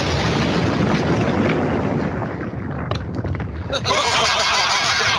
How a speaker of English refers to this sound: What's going on? I heard an explosion. Goddamn Mongolians attack the shitty wall again.